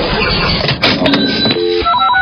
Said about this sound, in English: Just listen for the Channel 94.1 cash register.